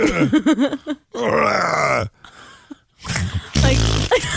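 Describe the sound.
Someone vocally imitates fart noises: a few short, buzzy blown bursts mixed with groan-like sounds, finishing with a loud, low, sputtering raspberry.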